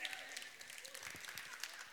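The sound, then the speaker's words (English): A single person's light, soft golf clap patters steadily for a couple of seconds, quiet, with a faint voice murmuring underneath. “I got one little golf clap.”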